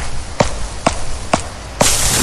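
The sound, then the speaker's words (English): Four sharp, clap-like smacks at an even, steady pace, each crisp and brief over a constant low hiss; a louder rush of noise swells in right after the last one. “Sounds like someone clapping.”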